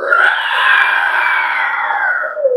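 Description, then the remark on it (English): A person voices a sustained, strained screech like a wounded armored creature whose back plates are cracking, loud for over two seconds, wavering slightly before sliding downward at the end. “You see several of the plates of armor on its back begin to crack even more as it screeches out in a.”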